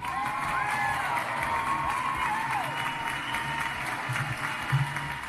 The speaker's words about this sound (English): let me get some claps and applause if you agree with me that everyone around Justin Trudeau is a fucking idiot and don't know how to run the TTC. Let me get applause.